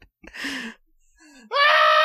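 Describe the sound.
A person gives a short, breathy shout, pauses, then lets out a loud, sustained, high-pitched scream, yelling at someone while passing them on the left, as a Rhode Island law requiring loud noises when passing is described.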